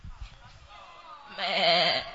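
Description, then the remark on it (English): A person imitates a sheep's bleat, a single wavering nasal "meh" that starts after a brief quiet murmur and holds loud for under a second. “Meh means that I am here.”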